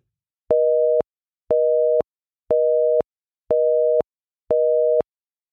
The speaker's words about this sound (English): Please, please let customers hear a busy signal when calling.